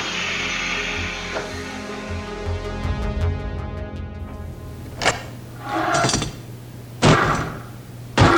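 A door bangs and rattles: a quick run of sharp knocking clatters, then four heavy, spaced thuds, each loud and abrupt, with a low hum underneath and no voices.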